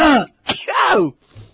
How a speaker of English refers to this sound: I would never sneeze. That was like a pansy sneeze.